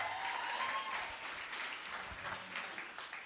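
A room full of people at a morning gathering claps steadily, a dense, sustained burst of applause at moderate volume that carries on for a few seconds before easing slightly.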